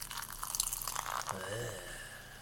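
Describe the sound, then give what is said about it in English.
Limited-edition carbonated wine, 11% alcohol by volume, is poured into a glass: a soft, fizzy splashing stream, then a brief gurgle with a rising ringing tone as the glass fills, fading into a quiet hiss; the wine is very light pink with a white foamy head. “And the pour.”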